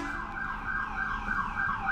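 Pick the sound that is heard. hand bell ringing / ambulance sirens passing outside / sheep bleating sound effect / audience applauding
ambulance sirens passing outside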